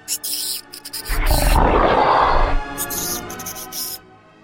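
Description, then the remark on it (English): A horde of giant rats and ogre-sized rat beasts on the flanks of a battle line howls, roars and squeaks, with a deep, swelling roar in the middle and sharp, hissing shrieks breaking out at the start and end, loud. “At the extremity of both flanks, I spied packs of ogre-sized rat beasts, surrounded by undulating masses of giant rats, each howled, roared, and squeaked, as was their wont.”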